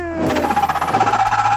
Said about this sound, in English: Bug sounds?